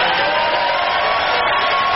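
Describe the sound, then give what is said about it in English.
A loud, steady roar of crowd cheering fills the two seconds, a dense wash of many voices and noise that holds without breaks and with no single voice standing out. “The crowd digs it.”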